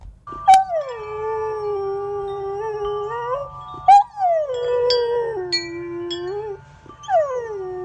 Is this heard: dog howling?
yes